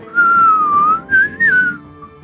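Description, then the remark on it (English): A man whistles through pursed lips, a clear mid-pitched tone that glides slowly downward, then two short rising-and-falling phrases follow after a brief pause. No one speaks. “And without even opening his eyes to look at you yet, he purses his lips and...”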